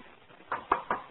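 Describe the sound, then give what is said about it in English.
Three quick knocks from a chair being bumped or shifted, evenly spaced, fairly faint with no voices. “خلاص, leave the chair alone.”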